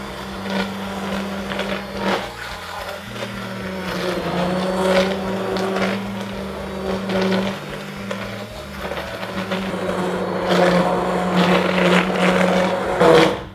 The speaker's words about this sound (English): So I'm going to just turn off my flame, and with my hand blender, and this is such a nifty tool, you really have to have one, I'm just gonna blend the soup and all the flavors are gonna come together.